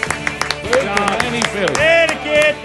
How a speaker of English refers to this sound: And let's all give a round of applause